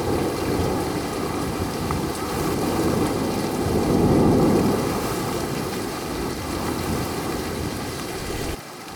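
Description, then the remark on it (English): Steady rain hisses throughout a thunderstorm, with a deep rumble of thunder swelling in the middle before easing back; no voices are heard. “Or possibly in a thunderstorm.”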